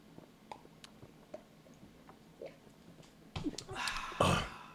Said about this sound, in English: Good God. I chugged very little of that. I chugged a nice big sip. You heard the foam come up? I did hear that. That was a foamy burp.